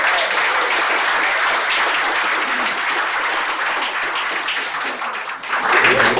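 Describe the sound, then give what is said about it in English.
A room full of people at a museum event applauds steadily for the people who brought dishes, a dense, even wash of clapping that holds strong for about six seconds and swells slightly louder near the end. “And let's have us just give them another round of applause.”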